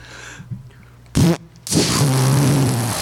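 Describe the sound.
A loud raspberry-style fart noise made with the mouth, a short burst followed by a longer sputtering blast; no one talks over it.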